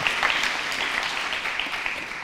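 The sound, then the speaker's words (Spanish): A crowd of people clapping together, a dense, steady wash of applause that holds at an even, fairly loud level for a couple of seconds without any talking. “¿Le damos un aplauso?”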